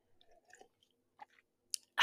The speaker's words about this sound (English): Just took a sip of an electrolyte drink because hashtag hydration.